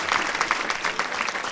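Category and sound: human body sound, hand claps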